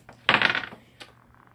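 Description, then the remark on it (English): Two dice rolled in a tabletop game clatter briefly across a hard tabletop, a quick rattle of tumbling knocks that settles, followed by one last small click a moment later. No voices. “Okay, I'll roll 2 dice, see how many hit him.”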